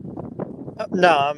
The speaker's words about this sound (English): I got it. It's windy out here. It's kind of loud.